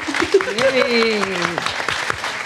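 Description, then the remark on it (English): A live audience claps steadily and fairly loudly throughout as a poll by applause, the dense patter of hands continuing while a voice rises in a drawn-out call or whoop above the applause. “If you're absolutely morally revolted by the term Jap, clap louder.”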